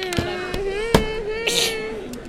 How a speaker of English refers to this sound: Bless you. Thank you. The way you sneeze, you went, achoo!